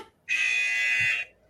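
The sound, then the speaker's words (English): A single harsh quiz-game buzzer blares for about a second, a loud, steady, raspy tone with a sharp onset and abrupt cutoff, standing alone without talk. “Let me read the last question again, and then you guys can buzz it.”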